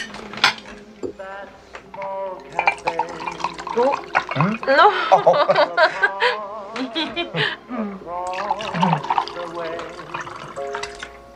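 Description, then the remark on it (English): Wine glugs and trickles into a glass for a toast, a steady liquid pour partly masked by voices talking over it, with a faint clink of glassware. “Let me pour you some wine.”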